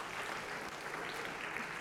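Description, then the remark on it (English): A crowd applauds steadily for two contestants after a game, a dense wash of many hands clapping at once with no breaks, sustained at an even, moderate level throughout. “So a round of applause for these two.”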